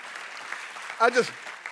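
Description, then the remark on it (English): An audience claps in a steady, even patter while a Baptist preacher preaches, with a brief raised voice cutting through the applause partway in. “It will not mess me up if you clap while I'm preaching.”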